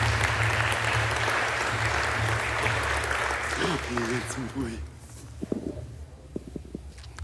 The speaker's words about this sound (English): So let's give him a round of applause as he comes up.